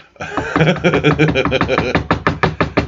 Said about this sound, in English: That was actually me knocking on a table with my fucking knuckles.